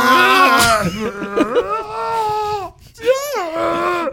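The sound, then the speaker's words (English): A person vocally imitates Chewbacca from Star Wars, a growling, furry alien creature: loud, rough, wavering howls that rise and fall in pitch, with a brief break before a final moaning burst. “I think I have a pretty good Chewbacca.”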